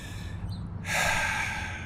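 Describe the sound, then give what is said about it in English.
A quiet moment gives way to a deep, breathy rush of air, fairly loud, like a long slow breath drawn in and let out. No talking. “Inhale, exhale.”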